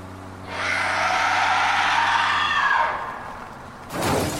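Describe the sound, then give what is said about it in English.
A loud, sustained tire screech over a low engine drone lasts a few seconds, fades, then a sharp burst of noise hits at the end, as a car hits a curb and spins out. “I hit a curb and the car spun.”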